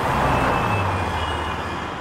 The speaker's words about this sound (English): we wanted you to imagine a bustling crossroads and you're right at the intersection driving your car.